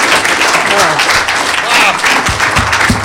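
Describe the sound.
A room full of people claps steadily in a dense, loud burst of applause, with a few scattered voices and low thumps mixed into the sustained noise.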